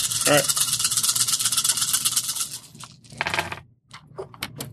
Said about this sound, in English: All right. Roll your dice again. Okay. Yeah, sixes.